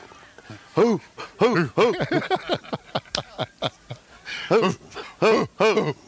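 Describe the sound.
Rob and Doug Ford bark like dogs along to a song on their News Talk radio show, a rhythmic chant of short repeated woofs in quick groups of three or four, loud over faint music underneath.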